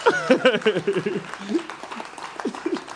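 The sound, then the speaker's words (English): An audience claps for the speaker's parents, seated at the back, in a steady, crackling wash of applause, with loud voices and cheering calls riding over it for the whole stretch. “And now listen, yeah, you can clap for them. You can clap for them.”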